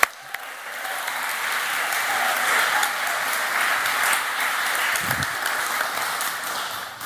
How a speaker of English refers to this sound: Give her a good cheer.